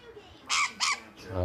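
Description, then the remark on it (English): A pet bird perched on a man's shoulder gives two loud, harsh clucking calls in quick succession, then a man's voice begins speaking just after. “The bird's back on my shoulder.”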